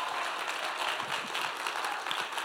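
A LifePoint church audience, risen to their feet, applauds a visiting pastor on her birthday, dense overlapping claps forming a continuous bright wash of sound at a moderate, even level throughout, with no talking.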